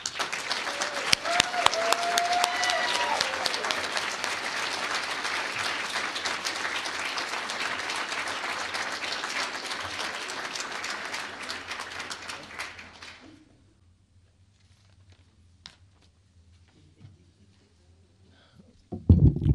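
A crowd applauds in a sustained burst of dense, steady clapping for about thirteen seconds, then it fades out quickly into near silence with only faint rustling afterward.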